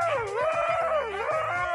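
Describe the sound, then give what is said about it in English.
A husky dog howls in one long, continuous wavering cry, its pitch sliding up and down in a sing-song way, loud, with no other sounds around it. “I mean, that thing will sing and go on and on and on until the leash is ready to go.”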